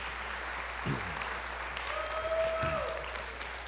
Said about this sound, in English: Come on and give him a hand clap of praise in this house.